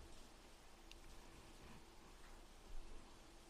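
Steady, soft rainfall hisses continuously in the background, a quiet even wash of noise with faint scattered patters and no voices.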